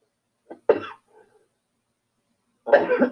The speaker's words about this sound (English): He's coughing. Give him a second.